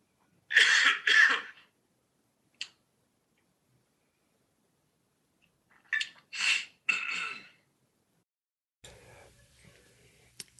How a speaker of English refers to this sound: I have to cough. Sorry.